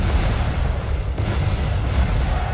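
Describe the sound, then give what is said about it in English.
A loud, continuous barrage of cannon fire from all three decks of a ship's cannons, fired almost simultaneously, heavy booms overlapping into one deep rolling roar that stays dense for the whole stretch, with no voices. “All three decks worth of cannons, almost not simultaneously, but pretty close to each other, let off an enormous barrage.”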